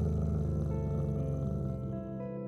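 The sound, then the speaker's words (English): A big cat growls in a low, continuous rumble with harmonic tones, steady and fairly loud throughout, then easing slightly toward the end. No one speaks. “and you hear a click behind you and a growling in front of you.”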